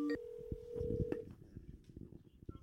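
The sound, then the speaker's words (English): A few quick phone beeps lead into a steady electronic tone, an outgoing call to MMA fighter Chito Vera, lasting about a second before fading into quiet line noise. “Hopefully he picks up the phone.”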